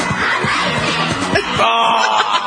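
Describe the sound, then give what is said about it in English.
A crowd of children cheering and screaming excitedly all at once at the opening of a game show, a loud, continuous high-pitched roar of yells and whoops that swells briefly midway, with no clear speech. “Oh, all the kids cheering.”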